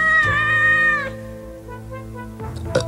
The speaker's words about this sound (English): They turn and see the cat come up and burp again as it lays down. I guess he's fat and happy now.